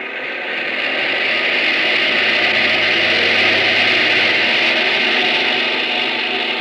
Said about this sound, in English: That's why we have these captive engines. Engines that don't ever get a chance to fly. No glorious destiny for these babies. They just run their hearts out on a test block. Bring number one engine up to maximum RPM.